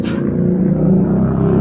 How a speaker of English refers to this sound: so this, my motorcycle goes by. I thought it was going the other way.